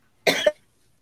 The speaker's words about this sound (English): Excuse me. Let me cough.